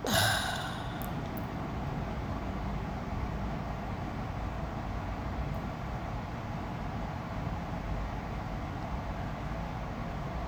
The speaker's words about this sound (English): Oh, thank God the AC turned on. It's enough white noise to fall asleep for the rest of this podcast.